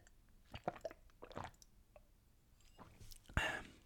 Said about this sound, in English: Just sipping my drink.